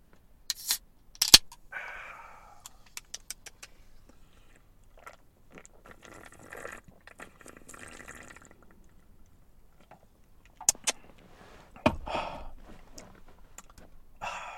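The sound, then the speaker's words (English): A few sharp metallic clicks as a can of Cherry Blade Lemonade Bang energy drink is cracked open, followed by a short fizzing hiss, soft liquid and sipping sounds, and a couple more crisp clicks later. “But since it has been a few days, and this is a special occasion, I'm going to crack open a Cherry Blade Lemonade Bang.”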